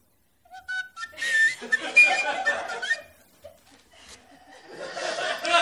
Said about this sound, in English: Surely the tunes that spill forth from the end of my whistle, all at once ancient and new, could not be considered an annoyance.